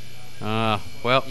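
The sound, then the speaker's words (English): A refrigerator's low, steady buzzing hum drones throughout at Vendor Coffee, with two short, louder tonal swells rising over it before fading back to the constant buzz. “Is there something we can do about the buzzing?”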